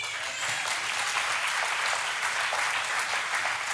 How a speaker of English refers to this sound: It was amazing. You guys did a phenomenal, phenomenal job. Now you can clap.